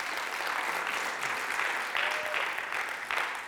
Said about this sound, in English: Come on, if you're going to clap, let's give him a good clap this morning.